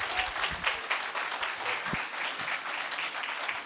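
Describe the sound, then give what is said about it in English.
A crowd claps steadily, a dense, continuous patter of many hands filling the space at moderate volume, with no voices standing out. “Hey, can we give these guys a round of applause?”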